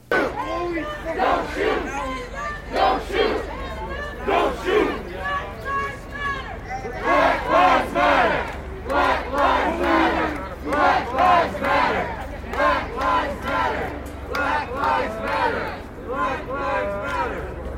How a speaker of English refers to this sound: Here are some clips of the protest I managed to record before my phone died at just about 6 p.m.